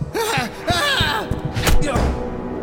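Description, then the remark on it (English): A body tumbles onto steps with a few heavy thuds and knocks in quick succession, mixed with strained, wordless vocal cries and grunts. “He gripped the handle, then pushed off from the railing, knocking me backwards. I fell onto the steps.”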